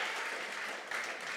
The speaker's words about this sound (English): So give them a round of applause, because that is a phenomenally hard work.